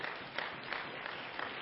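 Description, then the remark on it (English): A church audience applauding with a steady wash of hand claps, many people clapping together at once in an even burst with no talking, welcoming guests to the service. “And why don't the church folks give our guests a good hand clap today?”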